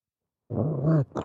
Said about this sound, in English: That's our guest. It's my dog who's annoyed with me.